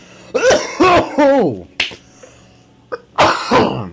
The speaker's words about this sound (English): I'm leaving all of that in this time. I edited out some coughing fits I had last night, but I'm leaving that shit in. That hits hard.